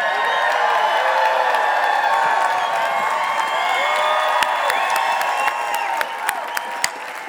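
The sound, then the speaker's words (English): A large audience at a Growth Day event, standing up for having had a life-shifting insight, cheers and shouts in a steady, loud wash of voices, then settles into a thinner murmur as a few scattered, sharp claps ring out near the end. “Oh, that's the clap you give for a life shifting insight?”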